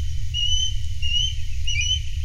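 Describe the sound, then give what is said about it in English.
An osprey, a big hunting bird, gives a series of high, thin whistled calls in three short bursts over a steady low rumble of wind or water, at Grand Teton National Park in Wyoming. “And that was the osprey.”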